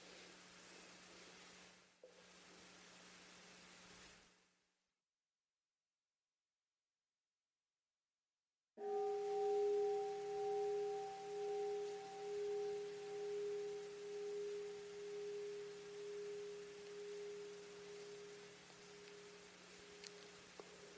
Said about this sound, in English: In a moment, I'll ring the bell once to signify that we'll shift to our group practice, and after the bell, I'll introduce that group practice.